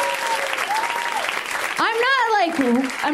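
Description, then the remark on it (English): A comedy show crowd applauds the comics steadily for a few seconds, the dense clapping overlaid with high whoops and cheering voices that swoop up and down in pitch. “One more round of applause for them.”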